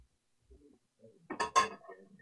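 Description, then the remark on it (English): A novelty bell, the "Let's Go Brandon Bell," rattles and clangs in a short burst of bright metallic jangles, peaking loudly in two quick strikes before trailing off into faint clinks, with no voices. “Time for the Let's Go Brandon Bell.”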